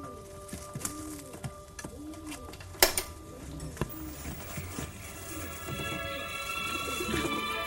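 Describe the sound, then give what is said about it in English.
A pigeon coos repeatedly while its foot is being bandaged, soft throaty calls rising and falling in a loose rhythm, mixed with light clicks, rustling handling noises and one sharp knock. “But how can you watch when you're bandaging a bird's foot?”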